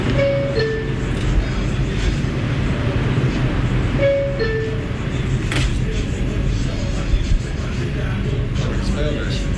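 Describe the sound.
A New York City 4/5 subway train, recorded on 24 August 2015, rumbles steadily and loudly throughout, with a pair of short two-tone chimes sounding twice and indistinct voices murmuring beneath the roar.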